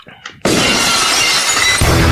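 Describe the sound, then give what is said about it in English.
A faint voice briefly, then a sudden, loud burst of shattering glass that roars on and on, opening Stone Cold's wrestling entrance music, with a heavy, booming rock beat kicking in right at the end. “When you hear that glass, it's your ass.”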